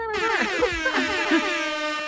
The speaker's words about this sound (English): This is where I'm going to put in the DJ air horns.